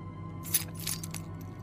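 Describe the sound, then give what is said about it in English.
A bunch of keys, the Gazette's news chopper keys, jangles briefly, a few quick metallic clinks and rattles over a low steady hum, with no voices. “And when everything at the office went down, I grabbed the Gazette's news chopper keys.”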